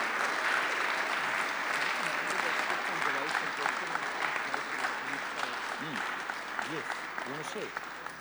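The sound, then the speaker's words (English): An audience claps in a sustained round of applause, welcoming people coming to the front to pray, dense and steady throughout, with voices calling out and a few cheers rising over the clapping. “Everybody is going to give you a big round of applause and welcome.”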